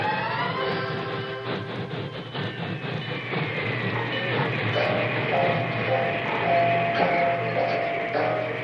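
A train rumbles steadily along the rails, loud, with a continuous heavy roar and thin metallic squeals gliding over it. No one speaks.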